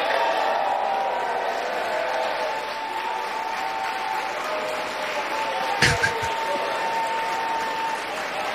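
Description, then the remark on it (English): A large crowd in a legislative chamber applauds steadily after a vote tally is announced (433 votes cast, 199 for Jim Jordan of Ohio, 212 for Hakeem Jeffries of New York), a dense, continuous wash of clapping at an even, moderately loud level, with one brief sharp knock partway along. “Yeah, they're just clapping it up. They're loving it.”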